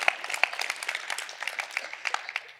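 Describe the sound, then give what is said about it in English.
A church audience claps together, a dense patter of many hands with sharp, bright individual claps scattered through a steady wash, sustained at moderate loudness with no voices over it. “I think we can clap. That's okay. That's church, and we can get excited.”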